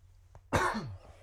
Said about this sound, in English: People are going to think we're dying. Yeah. Cough a lot.